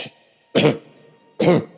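Two harsh, throaty coughs from someone who is under the weather, separated by a pause of nearly a second, with a faint steady hum in the background and no talking.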